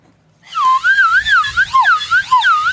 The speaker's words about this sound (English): That's a slide whistle through a mask. I like that more than I thought I would, actually.